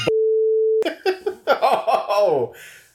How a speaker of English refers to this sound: Yeah, that's where you put a beep when you do the edit. That's a quick editor's tip.